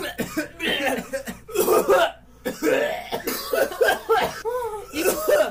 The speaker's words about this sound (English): Oh, I'm so sick. Can we have a little bit of consumptive coughing?